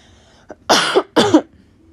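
Two forceful coughs from a person with throat issues, each a broad raspy burst, preceded by a faint short throat click, with quiet background otherwise.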